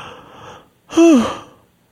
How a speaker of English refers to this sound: When I did that podcast, I would yawn. I noticed myself yawning like before the conversations. And she was the first person to say, oh, actually, that's your sympathetic nervous system like calming you down.